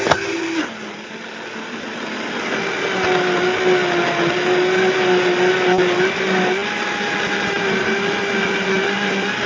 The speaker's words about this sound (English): What is that? Oh, my. Oh, not that stupid fucking water machine again.